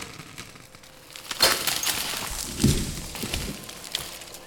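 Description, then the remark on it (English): A sharp, loud crack of a wooden door exploding, then a heavy low thud and a scatter of smaller clattering splinters settling afterward. No voices. “The door exploded.”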